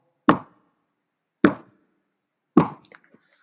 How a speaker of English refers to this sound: He got up, brushed himself off, and headed towards the door. I tell you, he was excited. This moment is the big reveal. He knocked on the door.